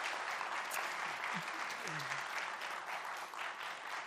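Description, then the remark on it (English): A church audience claps their hands in sustained applause as praise to God after a musical performance, a dense, steady wash of many hands that holds evenly throughout, with a few faint voices murmuring underneath. “If you want to give praise to God for the beauty of you just heard, clap your hands.”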